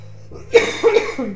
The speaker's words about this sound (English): Sorry, you guys. I'm coughing up a storm.